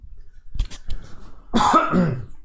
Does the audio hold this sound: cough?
yes